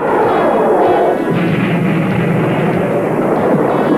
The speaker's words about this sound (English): they blow even some more rocks up there, and we see Alex and Bruce using the anti-gravity cannon